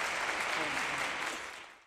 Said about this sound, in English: And then everyone applaud.